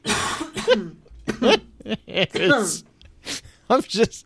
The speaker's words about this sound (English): It's me coughing without actually saying the things I want to say. It's the BS sensor going like haywire.